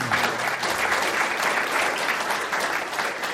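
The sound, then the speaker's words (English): A crowd claps in a dense, steady burst of applause cheering Norway for divesting its sovereign wealth fund from coal-related investments, staying loud and even for the whole few seconds, with no voices speaking over it. “That Norway deserves a huge cheer for that kind of leadership.”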